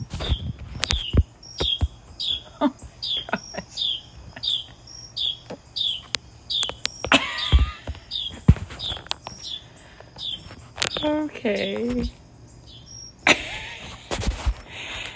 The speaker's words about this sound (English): That bird is outside my house, y'all. Clearly the world's loudest.